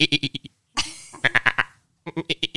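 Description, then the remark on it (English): A person imitates a goat with a series of quick, nasal, wavering bleats in short bursts, fairly loud, with a brief breathy rasp in the middle and a pause before more bleats. “Let's hear your goat sound.”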